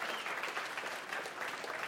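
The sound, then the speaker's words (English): An audience in a church applauds people aged 50 and over in a dense, steady wash of clapping that holds at an even level for the whole couple of seconds, with no distinct voices rising above it. “The rest of you guys should be cheering for these people. Give it up for these people.”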